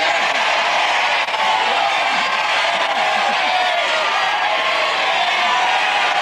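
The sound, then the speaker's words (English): A studio audience on a dating show shouts its verdict all at once on whether a contestant should date or ditch, a dense, loud wall of overlapping voices that holds steady for about six seconds, with scattered whoops rising out of the din. “Well, it's absolutely clear to me what she should do after listening to the crowd.”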